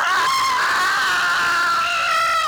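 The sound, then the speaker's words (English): A woman lets out a loud, sustained scream into a microphone, piercing and slightly distorted, holding one shrill pitch for about two seconds before it drops off. “I feel like you could have turned your head instead of screaming into the mic.”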